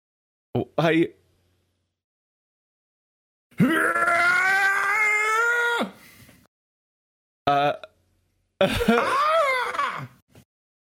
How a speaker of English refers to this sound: Oh, I did hear the Howie scream. They just slowed it down.